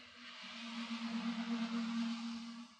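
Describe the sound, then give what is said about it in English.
Steady hiss of car tires on wet pavement in light rain, with a low, constant engine drone underneath, swelling slightly as cars pass; no voices. “Instead, all I hear is cars over there. Listen to that.”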